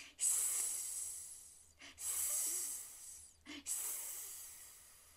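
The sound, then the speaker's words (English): A voice imitates a snake with three long, loud, airy hisses, each lasting over a second, separated by quick breaths in between. No words are spoken. “Can you give me a nice hiss for a snake?”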